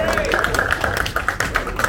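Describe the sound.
An audience applauds after a ceremony at a whisky tasting, with dense, steady clapping made of many overlapping sharp claps. It stays loud throughout, with voices mixed into the crowd noise.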